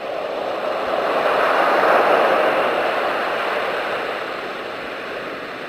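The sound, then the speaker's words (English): Soothing baby sleep sounds of steady ocean waves, turned on at night to help a baby fall back asleep: a soft, continuous hiss that swells gently and then slowly recedes, smooth and even throughout, with no voices. “Turn on soothing baby sounds, wait for sleep to wash back over her.”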